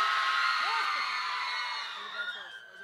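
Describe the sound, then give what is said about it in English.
A large concert audience screams loudly in a dense, sustained roar that slowly fades over a few seconds, with a few scattered whoops near the end. They are competing to scream the loudest to win a bass guitar. “To the person who can scream the loudest”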